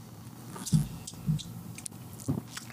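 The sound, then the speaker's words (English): Quiet sips of a bottled 6.3% ABV tan ale, a blend of porter and ale, followed by soft swallowing gulps, three brief wet mouth sounds spaced about a second apart with nobody speaking. “Let's take a sip.”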